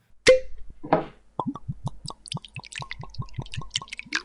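A dram of whisky, the third of a tasting, glugs from a bottle into a glass, starting with a sharp clink and a brief splash, then a steady run of about a dozen quick, hollow gurgles. No one speaks.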